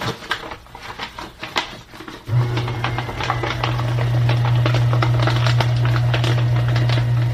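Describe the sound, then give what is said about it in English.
A few seconds of paper rustling and handling as Braille paper is folded in half, then a paper shredder motor kicks in with a loud, steady low whir while crackling, crunching bursts of the Braille paper being cut run over it. “So I'm actually going to fold this Braille paper in half and we're going to put it in the shredder.”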